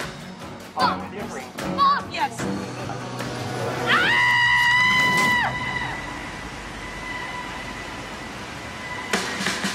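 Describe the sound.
A single high, drawn-out scream rings out for about two seconds in an Iceland commercial about recording your scream when feeling stressed, preceded by scattered voices and set over a steady background rumble that continues afterward.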